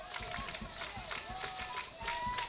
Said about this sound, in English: The Jackrabbits fans clapping.